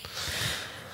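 A soft, breathy sneeze: a single hissing nasal burst that swells quickly and fades out over about half a second, fairly quiet, with no talking.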